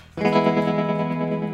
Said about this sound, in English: Right now, we are playing probably a slightly out of tune Telecaster through a hummingbird. That is an Earthquaker hummingbird.